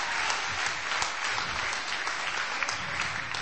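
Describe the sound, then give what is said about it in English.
A crowd claps steadily in dense, continuous applause for the winners of a game, many hands overlapping into a bright, even patter that holds at a constant loudness throughout with no voices standing out. “Round of applause, you're the winners!”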